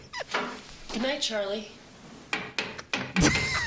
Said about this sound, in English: And faster, he just keeps going. Oh my god! She's just staring at him. She's not even looking at him. Just hammering away.